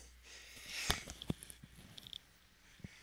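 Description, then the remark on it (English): A short, muffled sneeze bursts out once, a quick noisy snort-like puff followed by a few soft clicks and rustles in an otherwise quiet moment. “No, before I sneezed.”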